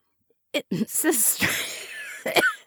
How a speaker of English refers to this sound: Joyce turned her face away from the receiver to cough as the stomach acid made its way up her esophagus